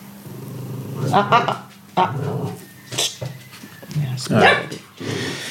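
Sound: dog whimpering and barking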